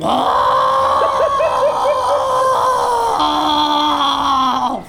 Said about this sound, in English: You're just gonna scream. That's the fastest way I can get you to understand the situation.